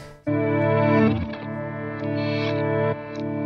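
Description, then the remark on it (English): A sustained guitar chord played through a reverse echo effect rings out with swelling, backwards-sounding echoes blooming around it, loud, with no voices present. “Because I don't think I've ever really used reverse echo.”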